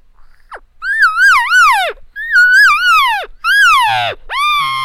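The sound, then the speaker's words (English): A person imitates an annoyed cow call: three drawn-out, wavering calls in quick succession, each bending and dropping in pitch at the end, loud with no other sound. “Well, a lot of times when those cows get annoyed, you'll hear them go.”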